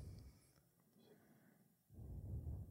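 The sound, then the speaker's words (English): Heavy breathing right into a microphone, a long breathy exhale followed by a louder, rougher rush of air, with no talking. “Jeez, you were breathing heavily into the microphone there. I could only hear your breath.”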